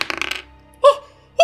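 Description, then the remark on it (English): A die is rolled, rattling and clattering briefly, then landing on a table with two separate, sharp knocks a moment apart, with no talking; it comes up a 4. “This one's going to go on the table.”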